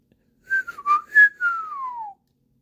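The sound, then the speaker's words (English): A person whistles a short, clear tune of several quick notes, ending in a long downward glide, fairly loud with no talking; the whistled tune is an insult about one's mother. “You hear that whistle, it's nothing good.”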